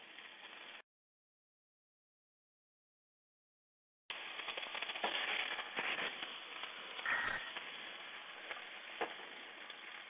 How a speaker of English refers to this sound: The sound you may be hearing is bacon frying in the frying pan, and I am in raw, waiting to know when to flip it.